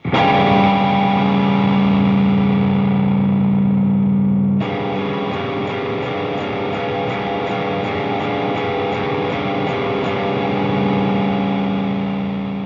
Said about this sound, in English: To flatten that, move the third finger to the next fret down so that D plays as a D flat. That introduces dissonance. For some extra oomph, let's hear that on an electric guitar with some distortion. And boom.